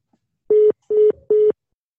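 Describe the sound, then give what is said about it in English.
Three short, steady electronic beeps in quick even succession, the tone a phone gives when a call is hung up, clear with silence around them. “I'm hanging up on the phone.”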